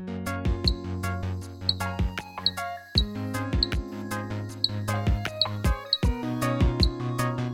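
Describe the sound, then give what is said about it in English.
A chorus of dink frogs calling: sharp, metallic dink notes repeat rapidly, about two or three per second, over a steady, layered low humming drone. There are no voices. “Here's the dink frog recording.”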